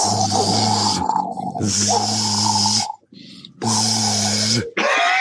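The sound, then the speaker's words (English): Voices imitate Cyclops' laser beam and fiery lava sounds with three loud, roughly one-second bursts of harsh hissing and buzzing, each carrying a low droning hum, separated by short gaps. “Laser beam volcano sounds were surprisingly good”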